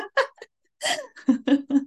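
A woman coughs in a short fit: a few small bursts, then a harsh, breathy cough followed by three quick, voiced coughs in an even rhythm.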